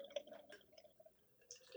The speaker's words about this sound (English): And don't forget vigorous pour. Yes. Three. Vigorous pour. Two. One. Oh, yeah. Whoa. Wow. It's got to get a little spurt, baby.